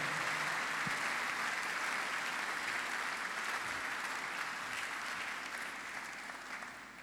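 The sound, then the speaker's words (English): An audience claps hands during a service in a steady, dense wash of applause that holds strong for several seconds, then gradually tapers off toward the end. No one speaks. “If you want to clap, clap well, clap well.”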